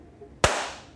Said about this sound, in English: Worst balloon sound effect ever, by the way.